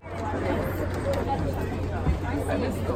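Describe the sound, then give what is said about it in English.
A dense murmur of many overlapping voices at the Frieze New York art fair on Randall's Island, where crowds surround a Red Grooms piece, a life-sized caricature of an MTA bus; a steady crowd babble with no single speaker standing out, with a low background hum and an occasional brief clunk. “On Randall's Island, crowds surrounded a red groom's piece, a life-sized caricature of an MTA bus.”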